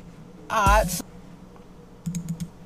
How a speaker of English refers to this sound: I wonder if they can hear all this clicking. They probably can.